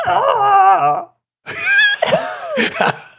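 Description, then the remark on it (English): A voice fakes crying in two loud, wavering bursts with a short silence between, the pitch sliding and warbling in a strained, squawky way like an odd bird, ending in choppy sobbing gasps. “That's the worst fake crying I've ever seen.”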